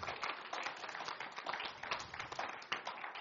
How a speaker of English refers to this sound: Help me give the Lord a clap offering. He's worthy to receive honor, glory, power with thanksgiving.